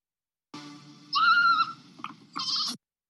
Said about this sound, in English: That's it. I love that goat.